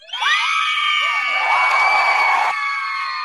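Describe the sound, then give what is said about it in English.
A wrestling crowd cheering sound effect: a loud wrestling-arena crowd erupts in cheers and high-pitched screams, a dense sustained roar lasting about three seconds before thinning slightly at the end. “It's like, if you're a wrestling fan, it's like the SmackDown pop.”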